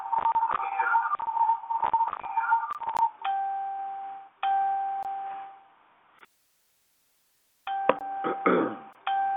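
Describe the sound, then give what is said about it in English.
A phone notification chime sounds repeatedly, bright electronic tones in quick clusters, then a few longer held beeps, a brief silence, and another burst of chiming. “Okay, I'm trying to get this sound and notification changed.”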